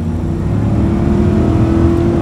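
The 400-horsepower T8 twin engine of a Volvo XC90 plug-in hybrid SUV revs and accelerates, a loud, steady low roar with a sustained droning pitch lasting a couple of seconds, with no voices.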